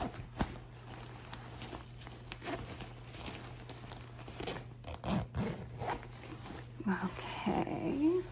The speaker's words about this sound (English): Okay, and then give me your other arm really quick through. And then we're just gonna zip you up.